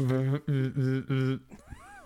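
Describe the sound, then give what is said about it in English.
A cat meows loudly: four drawn-out cries in quick succession, followed by a shorter, wavering call that rises and falls in pitch. “Oh, meow.”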